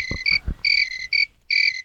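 crickets chirping

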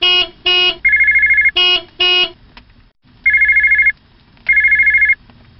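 telephone ringing

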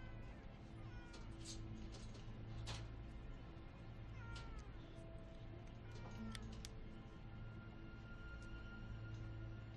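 cat meowing

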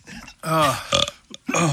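burping

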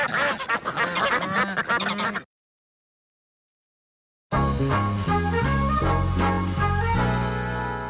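duck quacking

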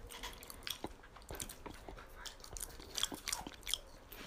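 crunchy snack being chewed

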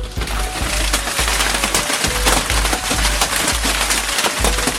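hailstorm

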